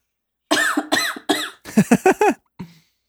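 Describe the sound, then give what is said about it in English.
A series of deliberate coughs into a phone app that checks for COVID: three separate harsh coughs, then a quick burst of three or four shorter ones, ending with a faint final cough. “I'm going to cough into it.”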